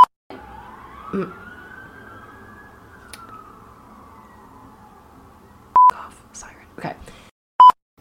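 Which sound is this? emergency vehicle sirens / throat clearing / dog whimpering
emergency vehicle sirens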